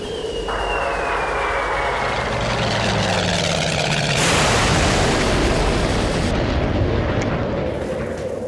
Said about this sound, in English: What are those lights? A helicopter? Poppycock. I won't believe it.